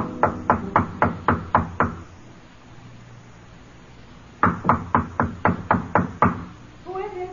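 Loud knocking on the door of hotel room 617 by a man in a pinstripe suit, in a dim-lit hotel corridor: a quick run of about seven raps, a few seconds of quiet, then a second equally brisk run of knocks, followed by a voice starting to speak.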